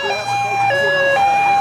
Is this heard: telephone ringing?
no